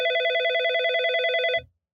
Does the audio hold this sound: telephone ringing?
yes